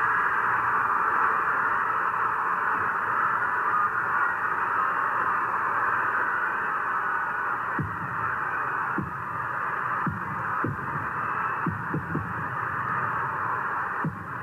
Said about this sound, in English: You can hear the fireworks.